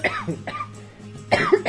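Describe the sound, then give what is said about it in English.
A person coughs: a couple of short, muffled, stifled coughs, a quiet pause, then a louder, harsher burst of coughing near the end. No one speaks. “I was trying to fight that cough, and I couldn't quite, which was why I was, like, hesitating to talk.”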